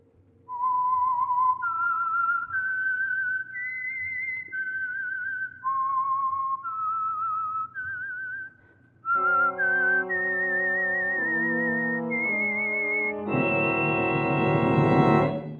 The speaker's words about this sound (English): And for Sunday evening listening pleasure, the signal to listen for is this whistle that identifies the Signal Oil Program, The Whistler.